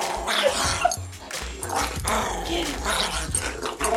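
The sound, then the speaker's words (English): Two dogs, Frankie, a 14-pound curly-haired dog, and Memphis, scuffle in happy rough play, trading rapid barks, yips and snarling growls in a continuous, chaotic tumble with hardly a pause. “Here's the only recording I have of him happily wrestling with my other dog, Memphis.”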